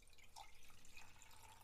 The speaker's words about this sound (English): Sometimes I don't have it before the stream, but I'm going to have it now. I like to do the pour over. This is what I love doing.